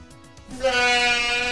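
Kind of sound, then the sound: sound effect, goat bleat sound effect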